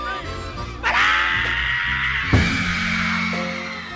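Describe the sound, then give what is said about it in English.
A singer lets out a long, strained, high-pitched scream that holds for several seconds on a live recording at the Apollo, cutting sharply over a loud, steady band backing. “What's the magic of that scream?”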